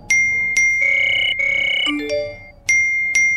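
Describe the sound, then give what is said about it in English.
A bright electronic phone notification chime: sharp pings, then a short melodic run of sustained tones and two more crisp pings at the end, loud, with no voices. “Everyone looked at their phones.”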